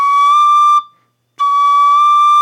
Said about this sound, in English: I have all of the holes covered on the penny whistle, and I slightly cover the tip, the exit up to get one lower note.